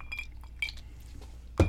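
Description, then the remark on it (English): Glasses clink together in a toast, a few bright ringing taps, followed by a louder knock at the end, with no one speaking. “I'm getting you a glass. I'm telling you I'm getting you a glass.”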